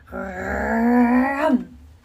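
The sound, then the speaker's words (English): A person imitates a baby black bear's growl with one sustained, voiced, rumbling groan of about a second and a half. It holds steady and fairly loud, then drops in pitch and cuts off. “I mean it, Baby Bear growled the best growl a baby black bear can growl.”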